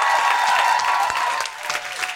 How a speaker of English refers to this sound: You have been a really terrific audience. Can I just have a big, big thank you and cheer? Can I have a big thank you and cheer for everyone here at the Punchline Philly for making us feel so welcome?